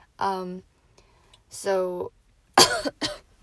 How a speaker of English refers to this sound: Man, this sickness is still lingering, even though I don't feel sick. The cough and stuff is pretty annoying.